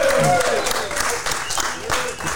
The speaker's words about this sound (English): We are in a parking lot under a tent on a beautiful fall night here at Holy Name of Jesus Catholic Community Church with the wonderfully handsome looking group of men here from Holy Name. So guys, clap for yourselves.